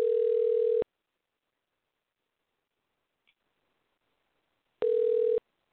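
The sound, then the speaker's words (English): Two steady ringback tones, each about a second long, separated by roughly four seconds of silence, as an outgoing phone call, placed live, rings out on the line. No one speaks. “You pick up this damn phone”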